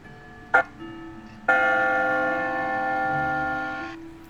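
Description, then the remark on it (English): Bells in the top of a stone, brick and wood church tower ring out: one brief clang, then a second, fuller strike that hums steadily for a couple of seconds before cutting off. No one speaks. “I can see a range of bells sitting in the top of the tower.”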